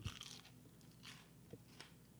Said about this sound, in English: They are really crunchy. I can hear it.